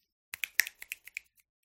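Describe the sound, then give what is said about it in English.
A quick run of about eight sharp, crisp finger snaps, fired off in an uneven rhythm over about a second, the last one softer, with no talking. “Well, I can snap my fingers.”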